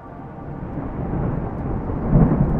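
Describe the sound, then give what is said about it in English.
A deep, continuous rumble of thunder rolls through a storm, swelling louder toward the end over a dense wash of rain, with no voices. “A fresh crack of lightning scorched the sky, and the heavens opened. Rain lashed against the thick glass of Harper's viewport.”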